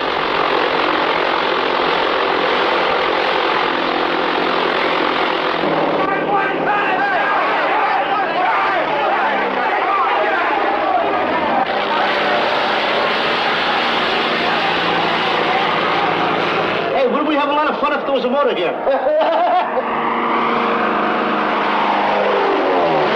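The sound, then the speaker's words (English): A propeller airplane engine roars steadily and loudly at an airfield for the whole stretch, its drone wavering in pitch as it revs up and settles, with a buzzing, throbbing texture. “What's that noise? Well, that's one of those planes over there.”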